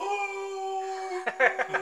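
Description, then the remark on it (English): A voice imitates a dog's howl with a long, steady, level-pitched tone held for about a second, then breaks into a short burst of choppy vocal sounds. “I wish Harvey would howl”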